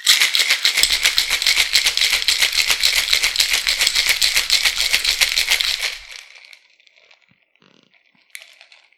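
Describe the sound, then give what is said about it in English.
A cocktail shaker holding a drink with allspice dram and simple syrup is shaken hard for about six seconds, a loud, rapid, steady rattle of ice, then it stops and a few faint clinks follow. “Close your shaker. And shake.”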